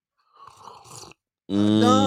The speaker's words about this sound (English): Like, it's like one, two, three, slurp. Right, right. Here we go. One, two, three.